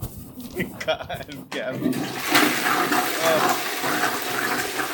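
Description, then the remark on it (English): Brief murmuring voices give way to a loud, steady rush of water as a toilet flushes, the hissing swirl surging and then continuing strongly to the end. “Toilet ASMR.”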